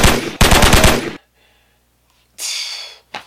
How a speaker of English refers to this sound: Everyone who's been watching, man, gunshots.